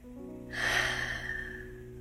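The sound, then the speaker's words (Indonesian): A long, breathy exhale through an open mouth during a guided meditation, after breathing in through the nose, begins about half a second in and slowly fades, fairly loud over a soft, steady tonal drone. “Ya, sekali lagi boleh banget pakai suara, tarik nafas. Buka mulutnya dan hembuskan nafas.”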